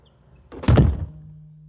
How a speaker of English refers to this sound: Okay, so I'm rolling, and you're going to shut the doors and leave me in here for a little while.